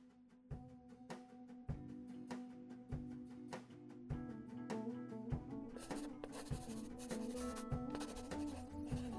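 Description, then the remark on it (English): A pencil scratches across a newspaper crossword in short, irregular strokes that grow busier and denser toward the end, set against a steady low humming musical tone. No one speaks. “This paper really must start writing harder crosswords.”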